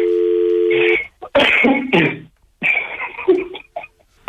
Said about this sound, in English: Okay, let's ring him again.